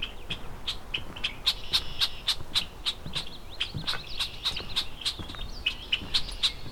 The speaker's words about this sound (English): Unhappy red-winged blackbird.